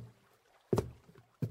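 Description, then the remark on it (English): Two hollow wooden thuds, fairly loud, sound as a woman steps off a small rowboat and heads toward a cabin. The bumps come about half a second apart against a quiet background. “And now she is stepping off the boat and making her way toward the cabin.”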